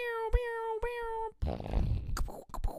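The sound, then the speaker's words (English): A loud, close-up fart sputters right into the microphone, a raspy, rumbling burst of about a second, coming just after a steady, buzzy tonal drone. “I'll edit in the fart you did in the mic right now.”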